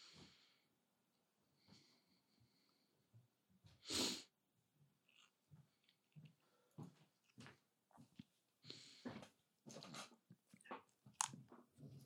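A single sharp sneeze bursts out loud at about four seconds, followed by scattered small shuffling, breathy and clicking noises with no speech.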